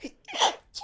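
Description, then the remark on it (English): A single sneeze bursts out sharply after a quick breathy intake, followed by a short puff of breath; no one speaks. “Bless you.”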